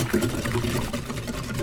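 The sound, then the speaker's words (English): Steady swishing and sloshing of liquid as spices are whisked into buttermilk, a continuous wet churning with faint rapid ticks, moderately loud and lasting under two seconds. “Now I'm going to whisk.”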